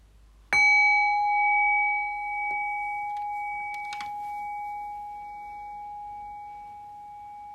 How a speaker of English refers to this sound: the bell.